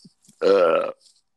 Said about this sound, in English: Not the burp.